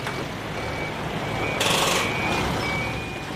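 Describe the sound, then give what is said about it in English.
Construction site noise in Queenstown: a heavy vehicle's continuous engine rumble with a thin, high beeping tone running through it, and a short burst of loud air hiss partway through. No one speaks. “But never far away from mingling with that soundtrack of water and birds is the percussion of construction.”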